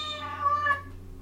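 A single drawn-out meow, done by people imitating a cat, high and tonal with a slight falling pitch, clear with no talking, trailing off into a low background hum.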